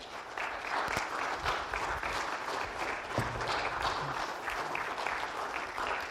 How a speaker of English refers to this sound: Thank you for praying for VBS this week. Thank you for all the people that helped. Let's give a big round of applause for everybody that helped with VBS.